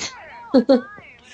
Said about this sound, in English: I just threw a piece of paper at my cat and she jumped about 8 feet in the air.